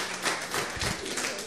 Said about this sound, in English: That way, amen, come on, you can clap. That's good advice.